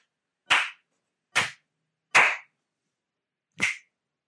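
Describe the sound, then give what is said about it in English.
Three solid hand slaps land in an uneven rhythm, followed after a short pause by one sharper finger snap, all crisp with silence between them. “It was three solid slaps and a single snap.”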